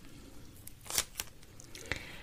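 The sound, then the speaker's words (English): Soft crinkling of a plastic bag holding a comb as it is handled, with a few brief rustles and crackles over a quiet background. No one speaks. The comb has been kept in the bag for more than 7 years. “Truth be told, this comb has stayed in this plastic bag for more than 7 years.”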